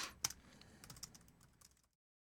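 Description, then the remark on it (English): Quiet, rapid clicking of keys on a computer keyboard as someone types a message in a chat, a short burst of typing with uneven taps, trailing off into silence with no one talking. “Sorry, I'm just typing something in chat.”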